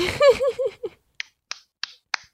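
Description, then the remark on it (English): Four sharp, evenly spaced hand claps ring out in a steady rhythm, following a brief burst of voiced, laugh-like vocalizing at the start. “Clap, clap, clap, clap.”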